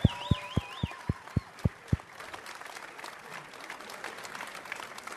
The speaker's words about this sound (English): If you think of the Minnesota Twins, it takes you about 5 seconds to think of these two names. How about a round of applause for two more Hall of Famers, Tony Oliva and Rodney Klein Carew, right here.